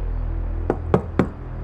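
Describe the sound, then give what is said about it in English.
Three sharp knocks on a door during a rainstorm, evenly spaced about a quarter second apart, clear over a low steady background rumble. “Again, a knock. Then another.”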